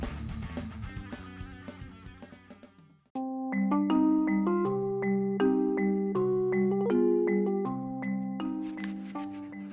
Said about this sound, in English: I just want to take a few seconds to apologize for all the background notification sounds. Talk about phenomenon and synchronicities. No one wants to text me all day or call me.